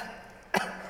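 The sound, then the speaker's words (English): A single small, soft cough from a little boy, a short breathy burst heard alone against a quiet background, over in a fraction of a second. “And he does a little cough.”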